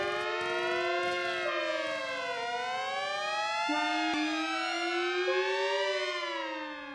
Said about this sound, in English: Now the construction workers are going to drill holes in the rock to lay the sticks of dynamite. Now that's the 4-minute warning alarm, so we must clear the area. Come on!